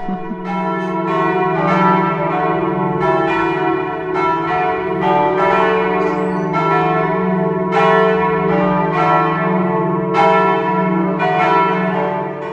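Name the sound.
cathedral church bells ringing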